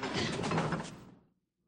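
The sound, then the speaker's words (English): An unlocked door opens with a single broad, scraping whoosh lasting about a second, steady before fading out into silence. No voices are present. “yeah, and the nice little ending where the door's not even locked.”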